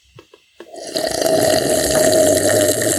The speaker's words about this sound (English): Oh, pause for pouring soda. Sorry. Pause for this.